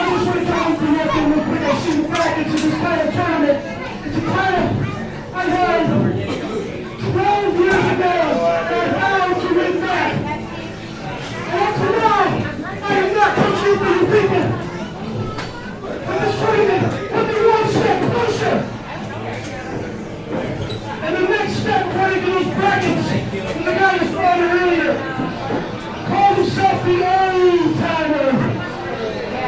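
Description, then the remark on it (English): A large arena crowd cheers and shouts steadily, a dense roar of many voices rising and falling in waves, loud throughout the entire stretch. “Showing lots of love for the Hype. Looks like the crowd is truly hyped up.”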